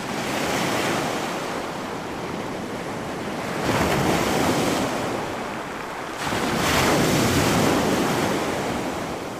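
Ocean surf roars steadily against the shore, with two louder waves surging and breaking around four and seven seconds, backed by a constant hiss of wash and a touch of wind.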